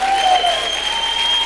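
audience cheering and applause

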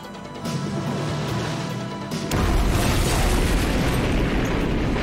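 explosion

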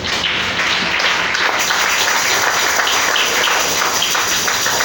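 audience applause

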